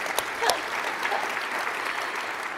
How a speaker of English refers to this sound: Amazing. Amazing. Yes, round of applause.